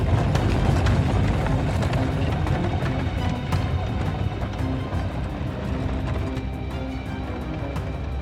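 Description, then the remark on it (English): Horses, including one named Arca, gallop at full pace as the reins are snapped to drive them into a darkened forest heading east: a loud, continuous rumble of hooves with rapid irregular thuds and a heavy low roar underneath, holding at full pace throughout with no voices. “I snapped the reins even harder to put Arca and the rest of the horses in full gallop.”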